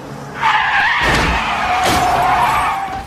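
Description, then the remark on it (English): A loud, sustained tire skid from the car crash in the death scene of the film Meet Joe Black screeches for nearly three seconds, a high squealing tone wavering over engine rumble, with a brief impact-like burst midway; no voices. “See, that's the sound of the car crash.”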